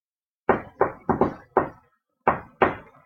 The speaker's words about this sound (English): Can we do like a real cool guy knock on the door? Yeah, how does it sound?